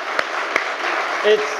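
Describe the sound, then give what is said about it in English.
A crowd applauds three-time world champion Freddie Spencer, a steady, dense wash of clapping that holds at an even level throughout, with a couple of sharper claps and a short tonal cry rising near the end. “But another big round of applause, 3 times world champion, Freddie Spencer, ladies and gentlemen.”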